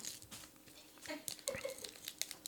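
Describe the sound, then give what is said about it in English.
Crinkling and ripping of wrapping paper as a gift box holding coasters is unwrapped, irregular rustly bursts and short tears over about two seconds, with faint background voices. “Man, this is wrapped good.”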